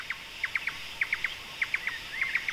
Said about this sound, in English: The bird calls never ceased. We heard laughing thrushes, and we heard drongos and Indian cuckoos and all kinds of birds with really distinctive calls. There was a kind of chorus behind us all the time.